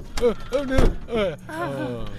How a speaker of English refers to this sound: Grabs that door and slams it shut.